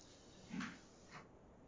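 Two soft, muffled thuds of doors being closed, the first slightly fuller than the second, heard at a moderate distance over a faint room hiss, with no talking.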